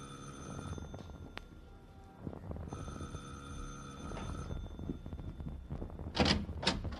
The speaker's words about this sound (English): Right. You ring the bell this time